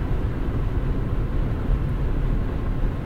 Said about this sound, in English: So far, so good in my 2011 Honda Accord. But man, this feels sketchy.